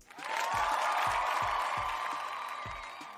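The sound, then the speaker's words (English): A loud, sustained burst of crowd applause and cheering fills the whole moment, with steady low thumps pulsing underneath like rhythmic stomping. “I got to at least give you, I got to give you a cheer or something.”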